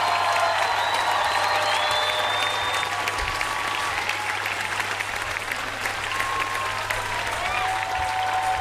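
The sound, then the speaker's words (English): A crowd applauds steadily for Toshi Seeger, dense clapping holding at an even level throughout with a few scattered whistles rising above it. “I would like to give her a round of applause for my grandma Toshi.”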